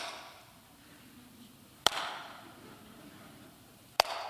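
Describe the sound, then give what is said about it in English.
Slow hand clapping, as done by bored cricket spectators at a slow-scoring batsman: two sharp, loud claps spaced about two seconds apart, each with a brief ringing tail, over a faint steady hiss with no talking. “And if you've been to a cricket match, you know slow hand clapping is not an appreciation of what's going on out in the middle.”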